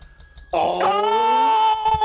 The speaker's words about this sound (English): But the integral member is here right now. Oh, it is the bell.